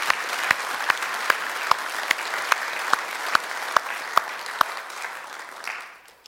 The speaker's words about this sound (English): Can we just give the Lord a hand, clap of praise this morning?